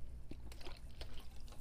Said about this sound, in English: I'm going to take a drink of water.